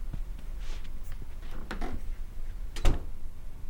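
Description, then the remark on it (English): A front door being shut and locked: several small clicks and rattles of the latch, then one firm thump near the end, with no one talking. “Please let yourself out by the front. The door will lock behind you.”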